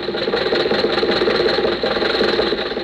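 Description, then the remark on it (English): A car engine runs steadily with a low, continuous rumble and a faint rhythmic knock, fairly loud, with no voices over it; it is Jack's car, carrying its riders home from the races. “When the races were over, Jack, Dennis, and I were riding home in Jack's car.”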